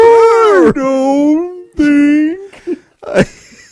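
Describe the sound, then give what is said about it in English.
A voice imitates a whale call with long, drawn-out warbling moans that slide up and down in pitch, repeated in a few loud stretches with short breaks between. “This next one is from a whale.”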